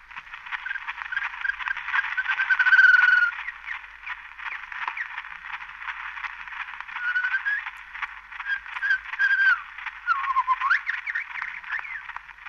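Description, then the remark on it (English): An Indian shama sings a continuous stream of varied whistles, trills and sweeping phrases, heard alone through a thin, narrow-band old recording with a steady hiss behind it; it is the first nature recording ever made. “This is an Indian Sharma. This is the first nature recording, and not only the first one; it's the only one for quite a while.”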